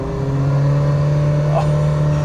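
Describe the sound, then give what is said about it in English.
A Ferrari sports car engine runs, holding a loud, steady, throaty drone with little change in pitch over a couple of seconds. “listen to that engine. That is just Italian music at its finest.”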